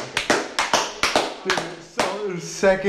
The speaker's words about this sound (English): So, like, dude, I don't know if this deserves a humble podcast brag clap, but I think it does. You know what? I think it fucking does